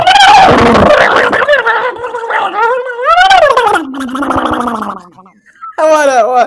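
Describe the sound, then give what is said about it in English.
A loud honk honk sound effect: raucous, rasping honks that swoop up and down in pitch for several seconds, a brief pause, then one more harsh honking burst. “So that is my honk honk of the week. And here comes the sound effect. Honk honk!”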